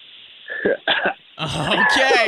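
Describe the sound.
A man clears his throat and coughs a couple of times because he had something in his throat, with a short pause between bursts, then breaks into talk right afterward.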